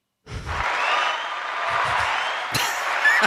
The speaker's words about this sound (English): Thanks for that. I had to have somebody applauding that.